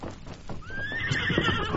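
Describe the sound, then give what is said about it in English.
A horse lets out a long, wavering whinny, preceded by a few sharp hoof clops on hard ground, as a man gets on the horse. Both sounds are fairly loud, with no voices. “Look, him get on horse again.”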